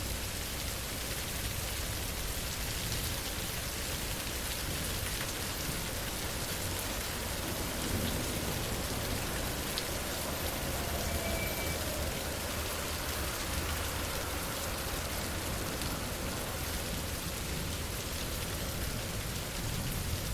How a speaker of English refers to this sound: I'm huddled under this tiny shop awning, me and three other people, all trying to shelter from this downpour. It means we all have to get close and hope that the drivers passing by will slow down and not splash us with the big puddles